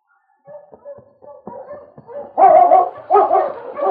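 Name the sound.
sled dogs barking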